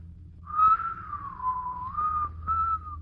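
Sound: human whistling a tune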